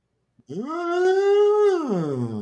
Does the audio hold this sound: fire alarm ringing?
no